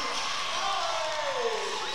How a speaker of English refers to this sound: And this crowd, as you can certainly hear on our crowd mics, just loving it. As the crowd going wild for these seniors